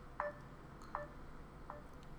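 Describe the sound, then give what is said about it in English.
A FaceTime video call ringing tone: three short electronic chirps in a steady rhythm, each a bit fainter than the last, fairly quiet and heard alone without any talking. “Okay, it's ringing. It's ringing.”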